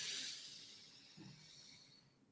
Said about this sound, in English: You must stop if you're going to do the activity of breathing in through the nose, which of course would be like this.